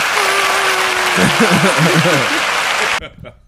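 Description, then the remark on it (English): Loud, dense applause with a crowd clapping steadily for about three seconds, a voice or whoop rising over it, then it cuts off abruptly into near silence with a couple of faint claps. “Cue the applause.”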